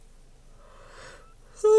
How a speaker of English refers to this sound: Sorry, you guys. Always yawn at least once during the podcast.